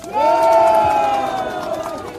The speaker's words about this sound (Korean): 여러분, 함께 한다는 마음으로 다시 한번 뜨거운 박수 부탁드립니다.